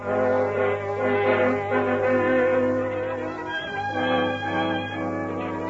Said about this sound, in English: It is late at night, and the whistle of a southbound freight is heard in the distance.